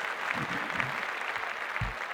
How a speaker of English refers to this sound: Let me give a round of applause for sports in general.